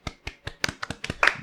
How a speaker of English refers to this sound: So if you push the right thumbstick, you actually do a golf clap, kind of like a...